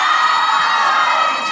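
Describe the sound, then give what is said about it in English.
A live audience at a show in the UK shouts back all at once in answer to a yes-or-no question, a loud, dense roar of many voices with cheering and whoops, sustained for the full moment before easing slightly at the end. “Was that a yes or a no?”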